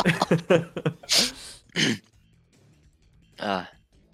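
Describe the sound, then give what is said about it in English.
A person mimics coughing, giving a few harsh, breathy bursts with short pauses between, following a quick run of clipped vocal noises. “You're like coughing like...”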